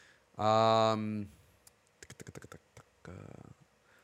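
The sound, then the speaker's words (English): A quick burst of about eight crisp keystrokes on a small mechanical keyboard, typed in a rapid run while looking something up, with a loud sustained vocal sound before it and a shorter one after. “Sonic voice actor, my little mechanical keyboard.”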